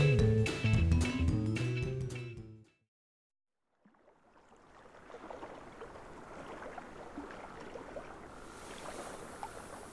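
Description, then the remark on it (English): Water sloshes and laps continuously around a boat, a broad splashing wash that rises after a short music sting and a brief silence, steady with no voices. “Oh, we're in some water.”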